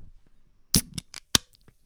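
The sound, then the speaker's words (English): A drink can is cracked open: a sharp metallic snap with a burst of fizzing hiss, then a few more crisp clicks and a faint trailing fizz. Nobody speaks. “Cue the can. Are you gonna do it? Nah, I don't want to spill it on my laptop.”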